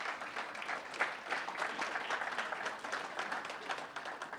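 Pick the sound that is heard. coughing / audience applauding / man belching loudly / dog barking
audience applauding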